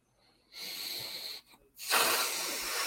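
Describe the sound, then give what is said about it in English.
A snake's hiss within a song being played sounds twice: a steady breathy hiss with a faint whistling edge, a brief catch, then a louder, harsher hiss that holds to the end. No one speaks. “I didn't know there was a snake and a turkey in her song.”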